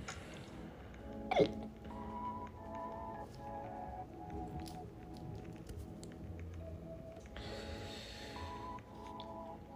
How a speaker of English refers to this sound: We gonna thug these hiccups out.